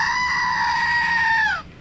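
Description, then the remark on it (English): A single loud, shrill electronic scream from a tiny screaming goat desk toy holds one strained note for over a second before breaking off downward. No one talks over it. “Steph got me a goat that makes that sound. It's teeny tiny.”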